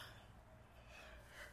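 A single drawn-out yawn, a soft breathy exhale that stretches for over a second, fairly quiet with no talking.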